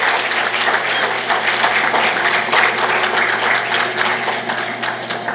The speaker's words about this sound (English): Wasn't that great? You can applaud for that.